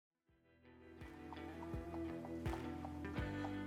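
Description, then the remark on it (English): Horse hooves clip-clop at a slow, steady walk, about four evenly spaced hoofbeats over a low, sustained humming background. No voices. “God, this horse, I've never had so much emotion.”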